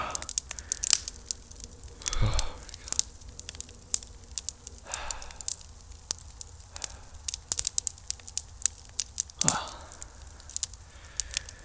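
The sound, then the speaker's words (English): A campfire crackles and pops, with frequent sharp snaps scattered irregularly over a low steady hiss, and a couple of brief louder whooshing flare-ups. “Never let a good campfire go to waste, huh?”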